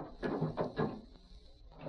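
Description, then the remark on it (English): A door being opened at night: a few dull wooden knocks and rattles in quick succession, then a quieter pause before another soft bump near the end. “Open the door!”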